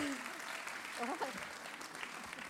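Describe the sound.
A crowd claps steadily in a dense, continuous wash of applause, with a few voices calling out faintly underneath.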